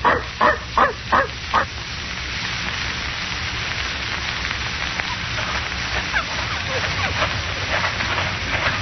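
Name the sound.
dog barking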